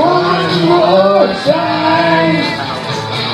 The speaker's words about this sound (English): Is that guys? Those are guys just screaming at the beginning. I guess.